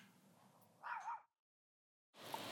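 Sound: dog whimpering or barking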